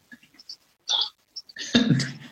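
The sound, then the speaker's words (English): A few faint clicks and a short raspy noise, then a loud, low, rumbling burp lasting about half a second that trails off roughly. “The hard thing about doing a drinking show is that burps are gonna happen.”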